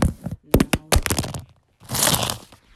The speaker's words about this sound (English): Sorry, dropped my phone. Slipped off my kneecap and my awesome black H&M leggings.